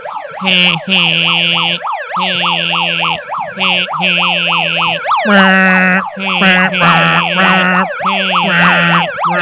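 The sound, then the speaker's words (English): Several police sirens wail together, loud, as 82 cars drive in a small circle for a birthday; their rapid rising-and-falling yelps overlap in a dense, continuous chorus with no voices. “With fucking police sirens going on.”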